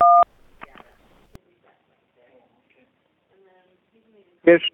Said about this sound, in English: Let's put it on speakerphone and see if that's any better. Let me just press the speakerphone button. That might help. Hang on.